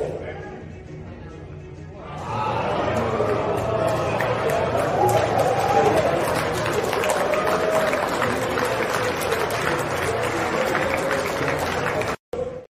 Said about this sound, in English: And then someone in the back wisely is like, "Oh, we got to clap. We're on TV here, people. We can't be scared."